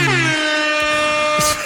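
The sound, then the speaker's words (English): A loud, sustained air horn blast sounds steady for nearly two seconds, its brassy stacked tones holding level before cutting off abruptly. “Ooh, your own air horn.”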